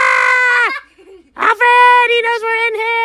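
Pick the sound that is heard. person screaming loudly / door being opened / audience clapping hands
person screaming loudly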